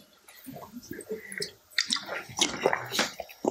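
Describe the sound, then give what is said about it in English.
A quiet sip from a drink: soft wet slurping and small liquid clicks over a few seconds, followed by a swallow, with no talking. “Just going to take a sip.”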